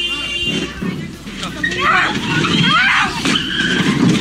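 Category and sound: vehicle, car skidding and crashing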